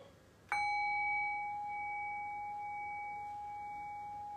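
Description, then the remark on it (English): A single meditation bell is struck once, ringing out clearly with a bright, sustained tone that slowly fades over several seconds. “Then I'll close us out, and so I'll ring the bell.”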